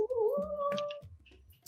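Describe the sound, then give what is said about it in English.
A cat lets out a drawn-out, warbling meow of contentment lasting about a second, fairly clear, followed by near silence with faint background rustling. “Oh, that cat. All right, he's so. These are he makes when he's happy.”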